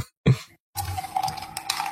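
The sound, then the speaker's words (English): Ice cubes clink and rattle in a drink over a steady wet, sloshing sound, with a short thump at the start and a few brighter knocks near the end. No one speaks. “No, that's not a straw. That's ice cubes.”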